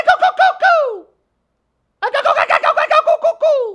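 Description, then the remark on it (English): A voice imitates a bird call with loud, rapid gobbling warbles in two bursts separated by a second of silence, each trailing off in a falling tone. “You got to do the bird call.”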